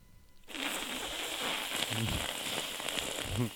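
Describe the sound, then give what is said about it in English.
A person imitates a goose that hissed at them at a movie theater: a harsh, breathy, sustained hiss lasting about three seconds, broken by a couple of brief throaty, voiced rasps. “And I look down, and I see a goose hissing at me.”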